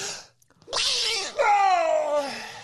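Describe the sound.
A single loud sneeze: a short breathy intake, a pause, then a sharp hissing burst that trails into a drawn-out voiced sigh with falling pitch.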